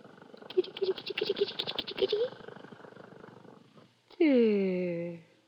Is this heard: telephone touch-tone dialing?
no